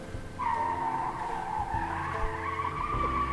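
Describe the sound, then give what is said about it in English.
A car skids and flips over, with a loud, sustained tire screech lasting about three seconds, a low engine rumble underneath, and no voices. “Oh God, why is the car flipped over?”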